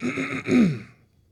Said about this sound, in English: excuse me as I'm trying to clear my throat.